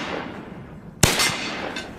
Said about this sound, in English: The shot whips off with a bang, tearing through the peaceful silence. I squeeze again and again, the sound thundering in the narrow stairwell.